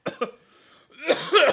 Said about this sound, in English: 300 coughs. At least. Into the microphone.